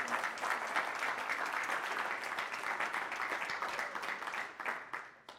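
A church audience claps steadily for several seconds, a dense, even patter of many hands that holds at a fairly loud level before tapering slightly at the end.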